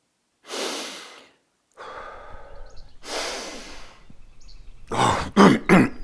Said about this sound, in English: Danny is sitting in the ditch, breathing deeply.